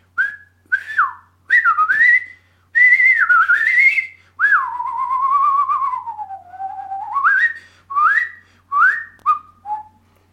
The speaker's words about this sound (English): You never even realized that you'd been practicing, but at that moment, you blew your whistle louder and clearer than ever.